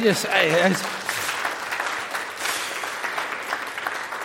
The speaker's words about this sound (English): Round of applause that the choir's back again.